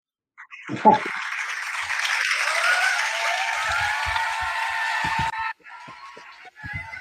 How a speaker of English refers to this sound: Applause, applause, applause. Crowd goes wild.